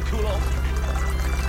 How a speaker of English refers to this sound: That was sauce pouring, the pouring sound.